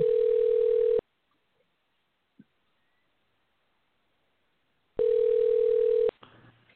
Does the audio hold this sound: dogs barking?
no